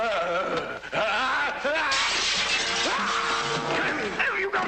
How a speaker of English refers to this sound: Actually kill, and then the guy just jumps through the glass and beats up Largo.